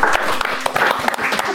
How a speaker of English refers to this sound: And I'll ask this nice group of poets and poetry readers, Vancouver-based friends of the Kelly Writers House and of Modpo, to signal their presence by putting their hands together to thank our hosts,